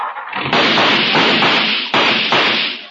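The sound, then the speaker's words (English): An old car engine sputters loudly and roughly, with several sharp bangs bursting through the continuous rattling noise, harsh throughout. “My, my, what a noisy car.”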